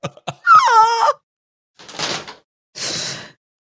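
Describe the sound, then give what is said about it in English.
A door opens: a couple of sharp latch clicks, then a long, loud wavering hinge creak, followed by two scraping, whooshing movements as it swings. No voices. “Open the door.”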